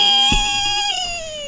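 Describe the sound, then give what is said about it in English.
A person's voice imitates a toy's scream as it falls while an artifact is destroyed in a card game: one loud, shrill, sustained wail lasting over a second, its pitch dipping slightly toward the end. “The little toy screaming on its way down.”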